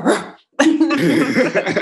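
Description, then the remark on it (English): A person imitates a dog, with a short rough bark-like burst, a brief pause, then a longer raspy, snarling growl, loud, with no other talking. “Like, this growl is for you.”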